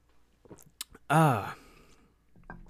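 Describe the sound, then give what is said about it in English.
A few quiet mouth clicks and a swallow as someone sips coffee early in the day, followed by a loud, satisfied voiced "ahh" exhale, then a faint breath. “Sorry, it's kind of early, so I'm going to take a sip of coffee.”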